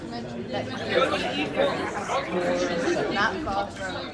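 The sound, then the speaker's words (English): Busy street chatter on Mallet Place, a street on the UCL campus: many overlapping voices talking at once, a steady murmur of indistinct conversation with occasional louder voices rising above the babble throughout. “Mallet Place is one of the key streets on the UCL campus.”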